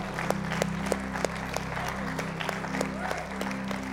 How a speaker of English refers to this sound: Come on, I love him tonight, don't you? Give him a hand clap of praise around this room.